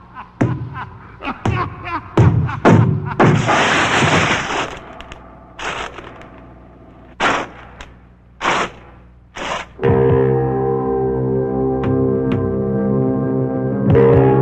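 A trap chest springs open and swallows a person with a quick run of sharp snapping cracks and a loud rushing burst, then a few separate thuds before a sustained, droning rumble as it buries itself into the ground.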